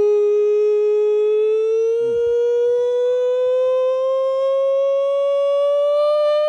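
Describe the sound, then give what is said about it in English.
A steady, loud siren sound effect used as a segment cue, with rich harmonics, slowly rises in pitch over several seconds, sounding alone with a brief low thump partway through. “that is the nonsense siren, which means it is your time to shine.”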